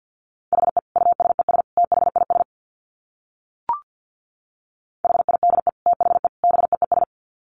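Rapid Morse code at about 50 words per minute: a steady mid-pitched tone keyed into quick dits and dahs in two bursts, separated by a pause with a single soft click.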